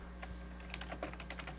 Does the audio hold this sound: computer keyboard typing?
yes